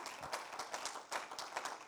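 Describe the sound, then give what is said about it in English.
A church audience claps together on Pentecost morning to celebrate the church's birthday, a dense patter of many overlapping hand claps held at a steady, moderate level throughout, with no voices over it. “Come on, why don't we give the church a clap this morning?”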